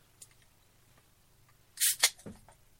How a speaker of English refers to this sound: But I am going to pop a Guinness, and then I'm going to have a shot of Jameson's for in celebration of my favorite holiday.